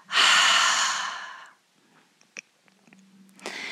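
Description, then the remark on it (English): During a breathing exercise, after tensing the body, a loud double exhale rushes out through the nose, followed by a quiet stretch with faint mouth clicks before another strong breath begins at the end. No one speaks. “Once more, double inhale. Tense the body and double exhale.”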